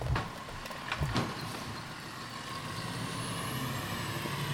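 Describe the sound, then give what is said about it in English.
A Provo City Sanitation garbage truck collecting trash early in the day rumbles steadily while a few sharp clanks and hisses burst out early on, followed by a thin, rising mechanical whine. No one speaks. “Well, the trash came today, but it comes pretty early.”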